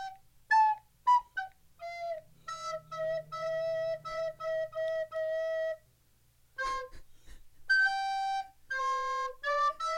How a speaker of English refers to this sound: Everyone loves the sound of a school recorder. Oh, my. Right. Let's hear Jingle Bells. Yeah, Jingle Bells, please.